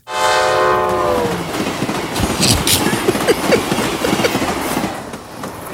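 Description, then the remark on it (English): A train horn blares loudly at the start, then gives way to the steady rumble and rhythmic clatter of rail cars rolling past, with no one speaking. “Oh, that's the train sound effect again.”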